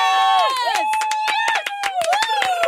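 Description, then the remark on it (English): A huge crowd roars and cheers loudly and continuously, played as a sound effect, with many overlapping voices whooping and shouting and scattered claps cutting through the dense wall of noise. “Can we let's get a massive crowd cheering again”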